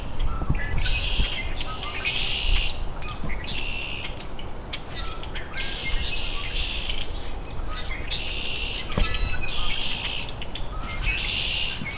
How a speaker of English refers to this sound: Okay, we're in the middle of it now. Common grackles, red-winged blackbirds.